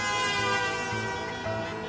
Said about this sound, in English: Back in France, millions of fans have been watching, crowded around grainy television sets in town squares and at local bars. They all go crazy. They take to the streets in their cars, honking their horns.